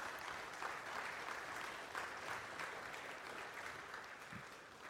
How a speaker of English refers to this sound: let's just give this team and Dale just show appreciation, a round of applause here that we're praying for them.